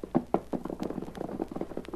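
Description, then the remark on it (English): Galloping hoofbeats of Lefty's horse ridden fast to take news to Greg's Corners, a rapid, uneven run of dull thuds and clops that keeps going for the whole stretch at moderate loudness, with no voices over it. “Lefty rode as fast as his horse could travel.”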